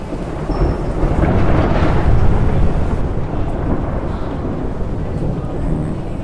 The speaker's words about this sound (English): they hear the roll of a thunder crash in the sky.